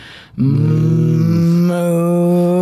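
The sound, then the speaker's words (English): A person gives one long, loud, sustained moo in imitation of a cow, a steady low droning call held for over two seconds after a brief quiet start. “And I pulled over and the cows started to come to me.”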